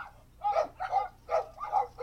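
A dog barks about five times in a quick, steady series of short, sharp woofs. Each bark is moderately loud, with no talking and only a quiet background between barks.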